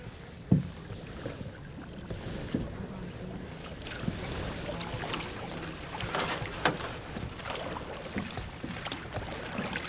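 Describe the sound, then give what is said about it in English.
A canoe glides through calm water during duck season, one paddler in the bow and another steering from the stern, with soft paddle splashes, drips and an occasional wooden knock over a steady, breezy wash of water. “I'm in the bow of the canoe while Lind steers from the stern.”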